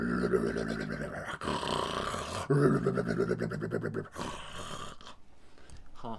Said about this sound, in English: So to set the scene, our heroes are approaching a dilapidated house. It's overgrown with vines stuck into the woods inside Angel's town. Inside, they hear something snoring.